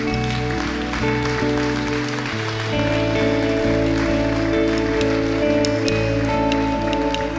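An audience applauds in a steady, dense patter that lasts several seconds, mixed with sustained keyboard chords that shift in the middle; nobody speaks.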